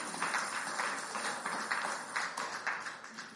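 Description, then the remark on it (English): A church audience claps hands in a steady, dense patter of many overlapping claps, a continuous rustling burst of applause with no voices standing out. “That's a good place to clap your hands right there.”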